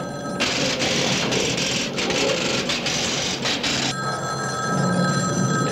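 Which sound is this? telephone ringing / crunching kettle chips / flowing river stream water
telephone ringing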